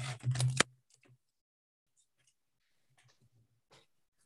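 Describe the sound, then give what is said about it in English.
A quick, loud riffle of playing cards being shuffled one last time, followed by a few faint, scattered soft clicks and slides as the cards are spread out. No one speaks. “All right, I'm going to shuffle the cards one last time and then I'll spread them out in front of me.”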